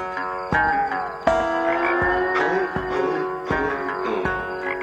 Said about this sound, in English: Well, dude, this is the frog on the beat. I love it.